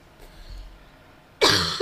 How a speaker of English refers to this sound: I'm so sorry for coughing.